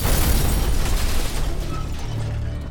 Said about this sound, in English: A moment later, a deafening explosion and fireball ripped through the crowd in front of the Marathon Sports Store.